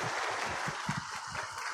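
An audience applauds a man who was just baptized and given a Bible, a dense, steady wash of many hands clapping that holds at an even level for the whole moment, with no voices standing out.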